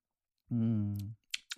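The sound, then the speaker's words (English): A quiet sip of wine: a low hummed murmur as the drink is taken, followed by two small, sharp clicks, like lips parting or a glass being set down. “I'm a few more sips into my wine at this point. I'm going to take a little drink, you guys.”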